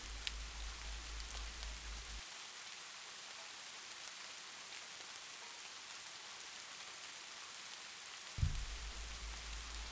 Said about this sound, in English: As you watch the rain, you begin to hear a soft pitter-patter. The pace of the rain is changing now. The droplets, larger and heavier.